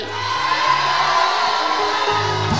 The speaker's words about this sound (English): Can I hear some shouting out here? Oh, y'all ain't loud enough.